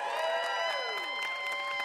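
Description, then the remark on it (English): An audience applauds and cheers for Steve Guttenberg, with a steady wash of clapping, scattered whoops and high sustained tones running through it, loud for the whole two seconds with no talking. “One more hand for Steve Guttenberg.”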